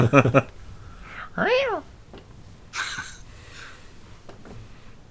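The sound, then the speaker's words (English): A cat lets out a single drawn-out, wavering meow whose pitch rises and dips like an eerie theremin, surrounded by a few short clattering bursts and faint background noise. “Somebody's cat is playing with the theremin again.”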